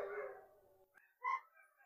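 A dog howls in a long, wavering tone, then lets out a short, sharp bark after a brief pause. It sounds fairly faint, with no one talking.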